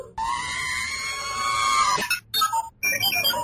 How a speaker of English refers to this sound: They all speak in droid binary, and this is just a bunch of beeps and boops. He did not put a lot of thought into that. They were just the beeps and boops that he could put his microphone in front of without getting a lot of audio feedback.